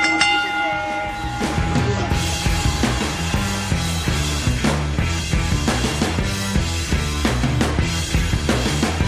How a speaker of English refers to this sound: ring the bell!